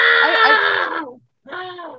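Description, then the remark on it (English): A woman's loud, howling scream from a film, with a wavering, undulating pitch, breaking off after about a second, then resuming in a second shorter cry. No speech accompanies it. “I was gonna mention it later, but did you hear that like cackle, like howl that she has or whatever when she was screaming?”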